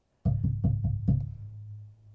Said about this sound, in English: He counts the minutes down on Dudley's watch and sits bolt upright when at midnight, on the dot, someone loudly knocks at the door.